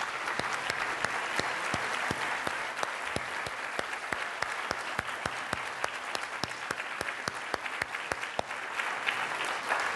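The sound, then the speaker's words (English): An audience at Stanford applauds the panelists after a panel conversation, many hands clapping in a dense, continuous wash of sharp claps that holds at an even level throughout with no voices standing out. “So a round of applause for our panelists.”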